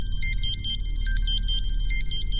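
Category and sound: signal or alarm, phone ringtone ringing unanswered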